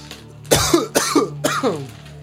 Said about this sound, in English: Got a cough, get off.